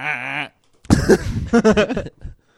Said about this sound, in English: Just had to clear my throat. I'm sorry. Let me clear my throat.